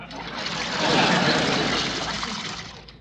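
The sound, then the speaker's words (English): A steady hiss of running water streams for about three seconds from a drinking fountain, swelling slightly in the middle before tapering off. “What are you doing at the fountain?”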